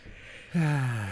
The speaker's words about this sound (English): Yeah, see? There she goes again. Yawn, yawn, yawn. Hey, I made it to like an hour before I started yawning, though.